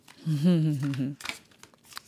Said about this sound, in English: I am shuffling the Modern Seer tarot deck, which is absolutely gorgeous, and I'm pulling for today, but the cards are quiet.